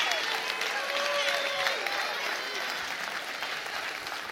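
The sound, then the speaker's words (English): Sustained applause from a large group, steady and dense throughout, with scattered voices and faint cheering mixed into the clapping. “Clap your hands and rejoice in that.”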